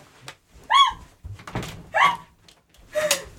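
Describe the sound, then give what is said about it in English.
A door is worked open in a studio: a few thumps and a dull knock, with short creaky squeals in between, spread over a few seconds and no talking. “Can you open the door for me?”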